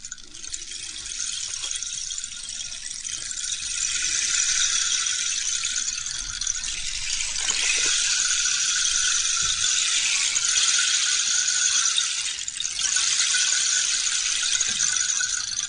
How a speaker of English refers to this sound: And here they are. It starts with a rain stick.